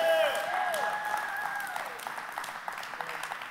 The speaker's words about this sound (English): I didn't cheer and clap like you did.